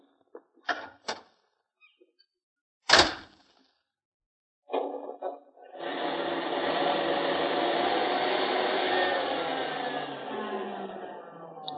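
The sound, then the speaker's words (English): A few sharp clicks and a heavy thump, then the engine of a 1939 sport roadster sputters, catches and settles into a steady, rumbling roar that carries on without pause as the car drives off. No one speaks. “That's a snappy little bus, this sport roadster of yours.”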